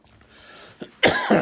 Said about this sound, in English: I'm starting to cough.